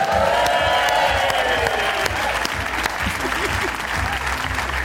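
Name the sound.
audience applause and cheering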